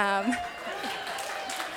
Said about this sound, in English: Now, you know, that got more applause than anything else.